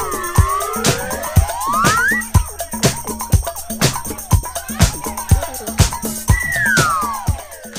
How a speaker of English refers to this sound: The slide whistle plays really long, but I feel like they make it shorter on this, unless I wasn't listening closely.